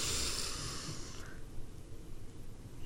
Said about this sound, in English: Okay, so before we get started, let's do our relaxation ritual. We're going to breathe in through the nose and hold it for a few seconds.